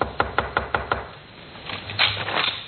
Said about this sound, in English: Then he stumbled to the door of Joy's room and knocked.